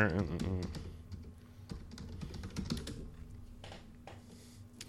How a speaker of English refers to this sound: I'm going to bring it up. You can hear me typing, and I'm going to tell you what the prices are. And I can't type right.